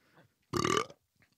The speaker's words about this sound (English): Do you speak burp? Nah. I'm too classy.